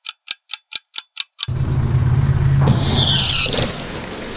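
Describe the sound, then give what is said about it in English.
A golden bus rumbles along with a low engine drone and road noise, then a hiss of air brakes as it slows, arriving at an abandoned TV studio, preceded by seven quick, even clicks. “Okay, the golden bus was slower than expected, but here we are!”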